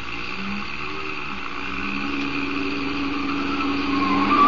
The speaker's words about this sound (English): You turn that corner on two wheels.